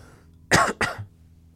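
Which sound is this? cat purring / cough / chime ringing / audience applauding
cough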